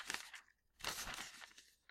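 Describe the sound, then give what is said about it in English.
A newspaper sheet is folded in half and torn along the crease, with two loud bursts of crisp crinkling and ripping separated by a brief pause, and no talking. “So, you'll have here a sheet that folds in half.”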